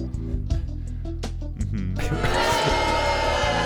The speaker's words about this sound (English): See, the crowd of children agree.